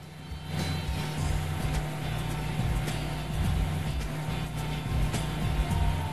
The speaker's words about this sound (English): With the boat in the water, we climb aboard and start to cruise across the lake